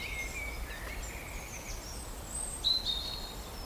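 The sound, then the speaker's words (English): Thin, high-pitched calls from a small bird in tall oak trees drift through a quiet outdoor scene, with a sharper, brighter note near the end over a low wind-like background hush. “It's such a small bird and I really want to see it.”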